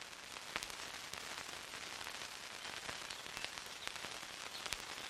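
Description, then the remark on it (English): Vinyl record static crackles steadily over a soft, constant hiss as an ever-present effect on an album, with scattered sharp pops and clicks popping out at irregular intervals. No voices. “On top of that, we have an ever-present vinyl static sound, which is arguably a bit affected.”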